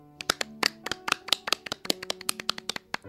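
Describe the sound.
Rapid, uneven hand claps using all five fingers of both hands, the last step of a rain clap, sharp bright slaps tumbling over each other like heavy rain, about twenty in three seconds, with no talking.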